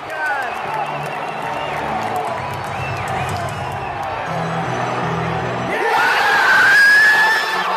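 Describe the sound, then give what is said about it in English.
A loud basketball arena crowd at Staples Center roars and cheers continuously as a player scores 60 points, building to a peak near the end where a single high-pitched scream from a young fan cuts through the dense wall of noise. “I was screaming so loud.”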